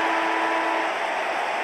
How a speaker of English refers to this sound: Sydney have control of the footy. The siren about to sound at the MCG. And the winner is Sydney.